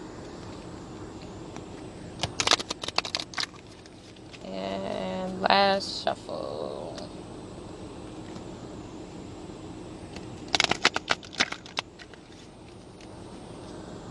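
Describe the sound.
Two short bursts of crisp, rapid riffling as a deck of cards is shuffled, one near the start and one near the end, with a brief spoken word in between, fairly quiet against a soft background hiss.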